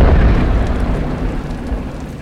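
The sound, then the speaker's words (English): A loud, deep rumbling roar from an explosion in a mountain tunnel after a Ford pickup is driven into the tunnel entrance, orange flames consuming the tunnel, a dense wash of low booming noise that churns steadily and fades slightly over about two seconds, with no voices. “The entire mountainside rumbled as orange flames consumed the tunnel, frying the bees swarming the entrance into blackened husks.”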